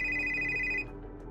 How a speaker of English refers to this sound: And as you're getting ready to leave, you hear the phone ring.